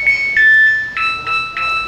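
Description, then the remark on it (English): A washing machine's electronic chime plays a short, bright tune of about five sustained beeping notes that step between pitches, loud and clear with no voices over it. “We were just talking about the doorbell? The washing machine.”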